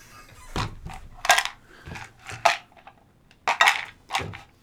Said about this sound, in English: All the dice have been placed back into the cups, and I can now move my chair back.